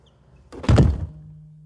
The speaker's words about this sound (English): Okay, so I'm rolling, and you're going to shut the doors and leave me in here for a little while.